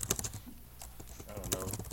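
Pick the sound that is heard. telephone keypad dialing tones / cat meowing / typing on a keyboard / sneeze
typing on a keyboard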